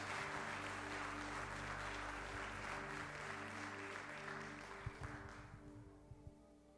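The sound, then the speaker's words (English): Steady applause from a church audience as a preacher comes up. A dense wash of many hands clapping holds strong for several seconds, then thins out and fades toward the end over a low sustained hum. “Give him a hand clap as he comes.”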